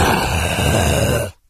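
A loud, breathy exhale blown straight into a microphone as its fader is turned up, a rough, steady rush of air lasting just over a second before cutting off abruptly. No one speaks.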